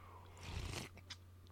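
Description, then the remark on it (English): A short slurping sip of coffee, lasting about half a second, followed by a faint mouth click against a steady low electrical hum. No one speaks. “I need another sip of coffee.”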